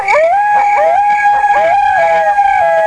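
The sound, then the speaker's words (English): Coyotes howl in a loud, continuous chorus of overlapping wavering cries, pitches sliding up and down without pause for about three seconds, with no one talking. “It broadcasts to five people. And three coyotes and 17 crickets.”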